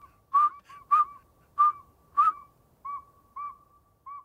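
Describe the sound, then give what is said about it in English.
A northern saw-whet owl whistles at night, a steady series of short, high whistled toots, about seven evenly spaced notes, clear against a quiet night background. “This nighttime whistler's a northern saw-whet owl.”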